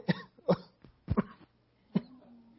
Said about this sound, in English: I'm not very manly this evening. I've already fainted and I might die of coughing.